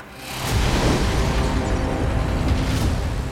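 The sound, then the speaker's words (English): A massive bomb explosion, set off when a house's front door is opened, bursts in after a brief quieter moment, then rolls on as a loud, sustained rumbling roar for about three seconds, with no voices present. “It sets off a massive explosion.”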